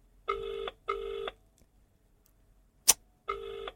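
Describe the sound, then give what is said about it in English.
An outgoing phone call's ringing tone in the double-burst pattern: two short tones, a pause broken by one sharp click, then the pattern starting again. It sounds clear and steady, with no talking. “If your phone rings for more than 3 rings, you're not answering your phone.”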